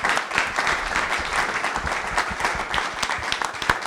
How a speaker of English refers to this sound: Well, let's give a round of applause to all our panelists tonight.